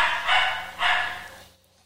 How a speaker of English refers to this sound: Wow, my dog is loud.